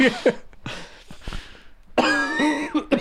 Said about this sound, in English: I've got horrendous heartburn, by the way. That's why I'm coughing so badly. It's all this Coca-Cola I keep drinking every day, man.